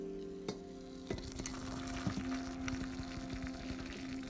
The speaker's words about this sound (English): My nice cute little red teapot. Pouring my nice cup of hot water in my delectable cup that says, all I want for Christmas is coffee.